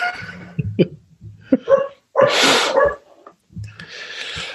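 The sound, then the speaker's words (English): A dog makes a string of short snorting, sneezy noises, with one louder breathy burst in the middle and scattered whimpers around it. There is no talking. “Dog is having a time. That's Granger in the background.”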